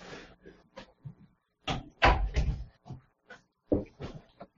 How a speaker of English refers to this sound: I'm going to slightly close the door just so that we don't have